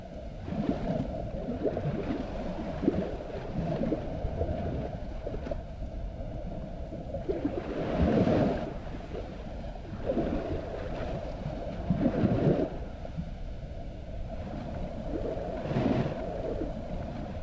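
Ocean waves roll in with a steady, deep rumble, surging louder every few seconds as each one breaks and washes up, with no voices over the continuous churning water.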